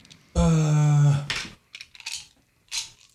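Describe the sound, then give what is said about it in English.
Dice clatter across a hard tabletop in a few short, bright rattling bursts as a player rolls for initiative, following a loud sustained humming tone at the start. “I need to roll dice finally.”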